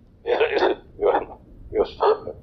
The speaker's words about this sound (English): oh, shit. I'm coughing that.